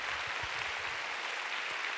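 A crowd applauds steadily to give the Lord a big hand, a dense wash of many hands clapping at once that keeps a constant level from start to finish, with no voices breaking through.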